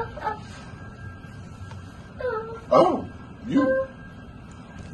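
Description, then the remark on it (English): A dog gives a few short yelps and whimpery barks, spaced irregularly over steady background noise, with a brief voice at the start. “With this dog, then, if you stay. Like this dog.”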